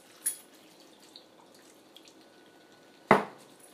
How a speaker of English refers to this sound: Oh, it says if it seems dry, add more cooking water until it's nice and saucy. Okay, yeah, I guess it does seem a little dry. Well, yeah, it's definitely not saucy. Okay. Add more cooking water, yeah.